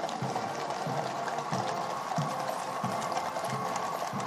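The hooves of enormous horses, among them Apollo and Atlas, clip-clop at a steady, even walking pace alongside drummers in a procession, each dull knock repeating about every half second against a constant wash of outdoor background noise.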